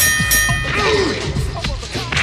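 A boxing bell dings once to start a playful mock boxing fight, its bright metallic tone ringing briefly and fading under a busy wash of clatter and murmuring voices.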